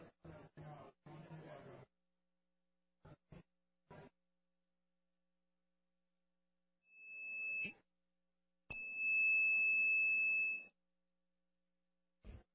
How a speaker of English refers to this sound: I'm not sure if that bell really works.